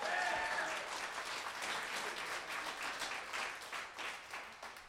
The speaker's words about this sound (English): Y'all give another round of applause for our great house band, ….